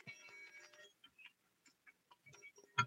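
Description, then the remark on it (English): A small bell rings in a bright, shimmering burst for about a second, then gives several scattered single dings, ending with one louder strike. No one speaks. “Oh, it's a bell. And what's that sound like?”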